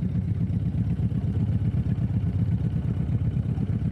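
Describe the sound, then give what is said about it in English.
A motorboat engine on a lake drones steadily, a deep, throbbing low rumble with a fast pulsing beat that holds constant throughout, with no voices. “Those are the sounds of boating and of the lake.”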